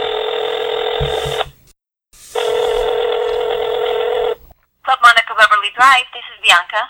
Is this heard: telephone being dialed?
yes